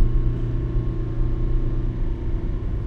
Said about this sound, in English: This is tough on the old Prius, getting up these hills. Hear that engine working hard?